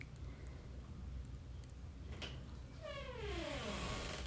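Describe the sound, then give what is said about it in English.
A cat named Salem, coming into the room, lets out a single drawn-out meow that slides downward in pitch, clear, over a steady low background rumble. “My cat just came into the room and that just scared me.”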